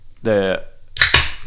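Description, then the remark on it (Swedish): A beer can cracks open in two quick, sharp bursts of bright hissing fizz, about a tenth of a second apart. A short, steady buzzing tone sounds just before. “Det låter som att man knäcker något.”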